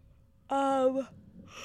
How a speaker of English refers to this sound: Let … know how disrespectful it is of her to just yawn on you like that